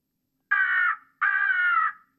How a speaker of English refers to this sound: That's a crow.